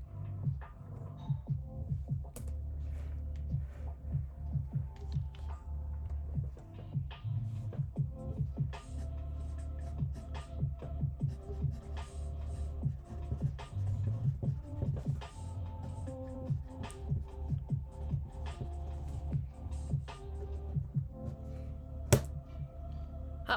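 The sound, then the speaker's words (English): Steady scratching of a pencil moving across paper while working a Pythagoras' theorem problem, in short irregular strokes and taps that continue throughout over a low background hum, with no one talking. “There's the pencil again.”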